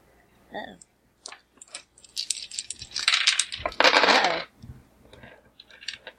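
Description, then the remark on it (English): Five dice rolled during a tabletop role-playing game rattle and clatter across a hard surface, bright clicking bursts building to a loud tumbling roll that settles into a few scattered taps. “So 5 dice.”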